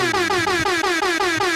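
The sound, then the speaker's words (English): A loud, blaring air horn sounds in rapid repeated bursts, about five per second, with a brassy, buzzing tone that fills the whole moment. No voices are heard. “Yeah, get ready for the air horn.”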